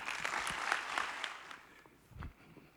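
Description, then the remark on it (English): An audience at Autumn Ridge applauds to welcome a guest preacher, a dense wash of clapping that is fairly strong at first, then thins and fades, with a few scattered claps trailing off at the end. “Thank you for receiving me with a hand clap of praise.”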